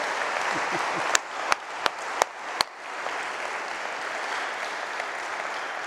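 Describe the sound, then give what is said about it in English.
An audience applauds in a steady, dense wash of clapping, with five loud, evenly spaced individual claps cracking out above the rest early on before the applause continues evenly. “But first, I want to thank you for this amazing sound that comes through you.”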